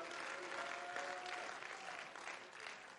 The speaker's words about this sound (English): If you're thankful for the cross, you ought to clap your hands and praise the Lord for it.